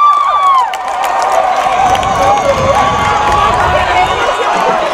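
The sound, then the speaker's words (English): A large high school football crowd of Manuel and Ballard fans, including the Ballard student section, roars steadily at a loud level, with overlapping shouts and whistles rising above a dense wash of cheering and murmuring voices filling the whole stretch. “Ooh, a nice Manuel crowd across the way. Ballard, a pretty good crowd all around here.”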